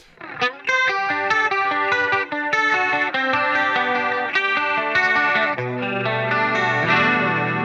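A clean electric guitar with a shimmering chorus effect and a Philosopher's Tone compressor plays ringing, arpeggiated chords in an 80s clean style, steady, with no voices, the notes overlapping into a lush, wavering wash.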